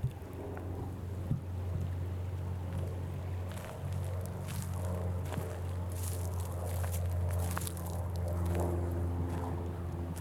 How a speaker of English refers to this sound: Me walking in the woods. We'll see what happens.